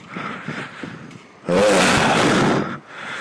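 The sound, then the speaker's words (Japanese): Street traffic, recorded while cycling to work in the morning, rumbles steadily, then a vehicle surges past with a loud, engine-heavy roar for about a second before the background traffic noise settles back down. “今ですね、ちょうど、二日酔いの朝、自転車で会社に向かっていく途中に、この録音をしております。”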